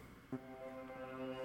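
A brief click leads into a long, steady honk, a rich buzzing horn tone that holds at even loudness to the end, with no one talking.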